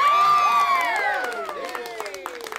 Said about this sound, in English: Listen to this sound file. I like the last person. It always happened in school. Did you ever have it where kids would try and be the last clapper? Oh, yeah. Someone does it in this. Listen.